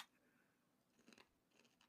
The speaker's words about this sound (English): Damn, that's crunchy bacon. Yeah, that's super crunchy.